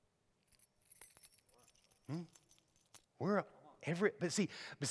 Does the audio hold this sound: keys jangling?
yes